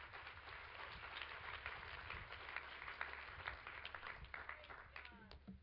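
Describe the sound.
An audience claps their hands in a steady, dense wash of applause lasting several seconds, with individual sharper claps standing out and some voices murmuring underneath.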